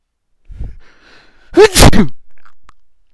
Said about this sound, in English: Excuse me. Yeah, I just sneezed.